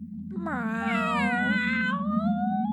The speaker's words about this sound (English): It is a cat. That's not a cat, it's a tiger.